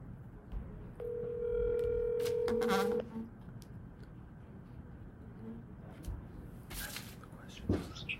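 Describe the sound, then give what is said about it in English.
A phone line rings once on an outgoing call to a team's player, a steady electronic ringback tone lasting about two seconds, fairly loud against a hissy, murmuring background with a few faint clicks afterward. “So I think now we're going to get him on the phone, right?”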